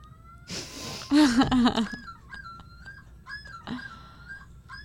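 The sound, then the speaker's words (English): A common loon's yodel: loud, wavering, yelping notes that rise and fall, repeated several times in a rhythmic series, following a brief burst of rushing noise at the start. “Studies of recordings have shown that the yodel is different for each loon.”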